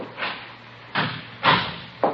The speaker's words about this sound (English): Close the door there.